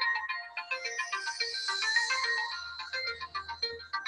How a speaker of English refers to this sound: That's a very cool ringtone. We had a little musical interlude there. And it wasn't from the chimes in my house. I'm so sorry, everybody. That was my bad.